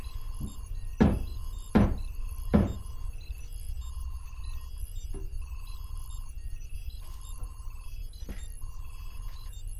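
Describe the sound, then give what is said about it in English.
Three loud, heavy wooden thuds in quick, even succession as a plank bangs against a ceiling, followed by several seconds of quiet with only a faint electronic hum. “All right, I've got the plank, and now he knows that when I bang this plank on my ceiling 3 times, that he stinking better stop whatever loud noises he's making, or Daddy's gonna come up and bring the thunder.”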